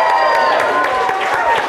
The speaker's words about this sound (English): So if we could give a round of applause.